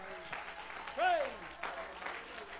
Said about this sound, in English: Oh, stand to your feet and give the Lord a hand clap.